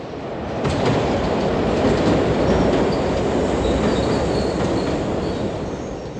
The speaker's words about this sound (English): You're early to work that morning, stepping into the Circle Line tube train, still rubbing sleep from your eyes, first coffee of the day in hand.